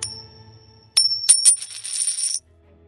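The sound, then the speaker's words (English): A coin rings out: a bright metallic ping, a couple of quick clinks, then a shimmering spinning rattle that stops abruptly, with no voices. “They tossed a coin to decide the matter.”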